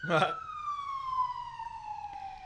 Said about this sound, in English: Oh, it's good because there's a siren going by. This is a good time. Hold for sound. Hold for New York.